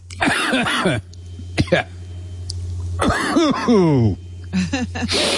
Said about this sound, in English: No. I choke on this shit. You know what they say, you have to cough to get off.